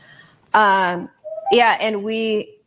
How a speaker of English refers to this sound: Can you guys hear the dog whining in the background? I'm dog sitting right now. He's got a lot to say about this topic too, okay?